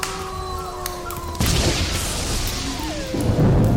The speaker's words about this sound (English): I'm gonna light the fire. There's the fire. There's the wind, the storm, everything's going on.